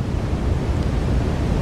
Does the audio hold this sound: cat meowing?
no